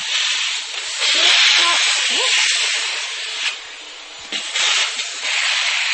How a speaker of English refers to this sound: then I'll just stop in whichever room I'm in, the kitchen, and then I'll just open a drawer and see if there's maybe something there that needs a quick hoover. I'm going to get that random hoover.